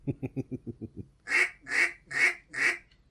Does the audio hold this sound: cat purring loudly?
no